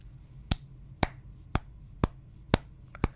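Six soft hand claps in a slow, steady rhythm, about two per second, each a short sharp smack over a faint low hum, with no voices.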